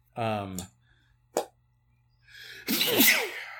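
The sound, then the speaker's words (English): A single loud sneeze: a voiced build-up that bursts into a sharp explosive sound, followed by a brief click and then a noisy, breathy burst of voice. “Notice how when I said cobweb, I sneezed.”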